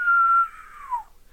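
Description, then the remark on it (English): A single whistle from a person trying to whistle holds a steady pitch, then slides downward and trails off after about a second, slightly breathy and wavering, with no talking around it. “I can't whistle.”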